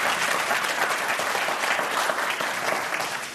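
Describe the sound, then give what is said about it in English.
Steady, dense audience applause welcoming Arkansas Governor Hutchinson: many hands clapping together in a bright, crackling wash that holds at an even, fairly loud level throughout, with no voices rising above it. “One more round of applause and a very warm welcome to the Governor Hutchinson.”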